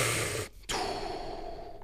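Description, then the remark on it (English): A voice imitates the heavy, forceful breathing of the Wim Hof method: a long noisy exhale, a brief pause, then another strong rushing breath, loud with no words spoken. “So I walk in and here's my lovely wife in the lotus position doing the Wim Hof breathing.”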